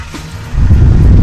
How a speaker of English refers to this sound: Start up the car.